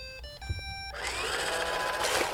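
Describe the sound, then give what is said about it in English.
An iRobot home-cleaning robotic vacuum cleaner, started with its clean button to clean the house, gives a short series of electronic beeps, then its motor whirs up into a steady, fairly loud hum with brushing noise. “Yeah, but they're robotic vacuum cleaners. You press the clean button and you walk away and they clean the house.”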